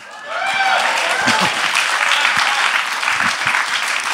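Steady audience applause rising quickly and holding loud for about four seconds, a dense crackle of many clapping hands with a few whoops at the start.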